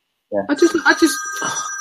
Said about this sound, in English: the phone's ringing off the hook